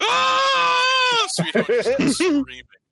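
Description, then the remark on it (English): A voice performs a loud, sustained, wavering scream for just over a second, the scream of someone leaping off an edge and gliding down towards the ground. It is cut off abruptly as someone starts talking right afterward. “The two of you up top watch as just the scream continues and just fades away as they glide down towards the ground.”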